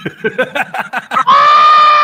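A 25-year-old man lets out a loud, sustained high-pitched scream that holds steady for about a second, right after a rapid run of short, choppy vocal bursts.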